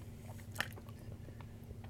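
Wet chewing with a single sharp crunchy bite partway through, followed by softer mouth noises over a steady low hum. No one speaks.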